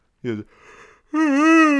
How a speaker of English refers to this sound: That's the, I don't even know which Will Ferrell movie it is, but that's the Will Ferrell yawn.